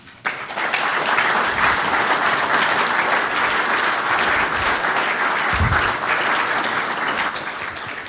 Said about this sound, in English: I'm sure you recognize by the strength of the applause that was much appreciated.